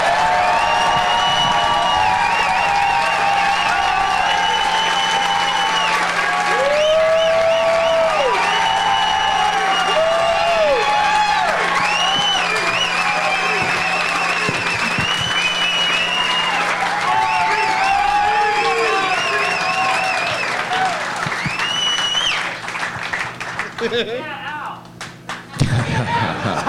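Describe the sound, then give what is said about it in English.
A large audience applauds steadily as comedians are welcomed to the stage, many voices chanting for Ari Shaffir and cheering in rising, sung-out calls, the whole din holding loud for over twenty seconds before thinning out near the end. “There's a lot of chanting for Ari, and then finally a yeah, Al.”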